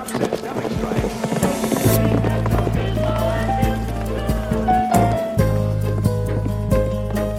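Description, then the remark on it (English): Horse hooves gallop in a quick, uneven clatter of sharp thuds, running over a steady low musical drone that swells in about two seconds in. “Sometimes a zebra escapes from the zoo, and if you don't look up to see it, it'll gallop by, sounding just like a horse.”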